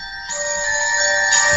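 A mobile phone ringtone plays alone, a steady electronic tone with bright layered pitches that swells slightly louder after a brief moment and holds at moderate volume.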